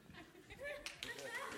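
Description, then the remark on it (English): A short burst of audience applause, scattered claps rising with a few sharper hits, mixed with murmuring voices and light laughter from the crowd. “Oh, by the way, I would just like a bit of applause at this point in the...”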